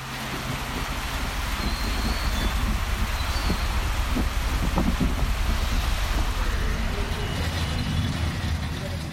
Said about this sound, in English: Outside, the rain starts again.